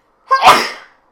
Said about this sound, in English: It's allergy season, guys. Spring sucks. Spring. I keep sneezing.